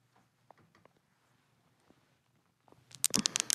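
Handmade amethyst crystals worn on leather thongs knock together in soft, scattered clicks, then break into a louder, rapid cluster of bright rattling taps near the end.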